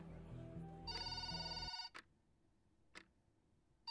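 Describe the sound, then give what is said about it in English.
A work phone rings loudly, a bright electronic ring lasting under two seconds, followed by a few short sharp bursts spaced about a second apart. “It's my work phone. I go to hang it up immediately. It goes off again.”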